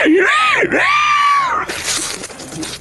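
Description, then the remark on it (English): A voice imitates a Top Hat Spider ignited in a burst of flames, shrieking and screeching with high, wavering swoops for about a second and a half as it stumbles back, then breaks into a rough, hissing crackle of a burning sound, loud. “You, in a burst of flames, that spider just ignites and stumbles back, screeching.”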